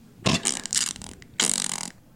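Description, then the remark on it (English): A voice imitates a narwhal call with two loud, wet, buzzy blasts, the first about a second long and the second shorter after a brief pause, with no talking. “That's my narwhal sound effect.”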